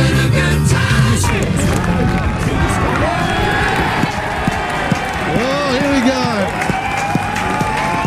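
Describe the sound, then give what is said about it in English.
A large cricket crowd cheers in a loud, steady roar for the whole stretch, with individual voices shouting and a few drawn-out sung calls rising above the din. “There's a happy crowd”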